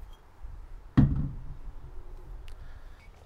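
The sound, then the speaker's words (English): A door shuts with a single solid thud about a second in, its low rumble fading over the next half second, followed by a faint click and quiet room noise. “I hear the door close.”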